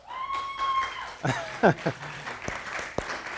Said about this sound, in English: Most of you don't really know why you're clapping, but I'm about to tell you why.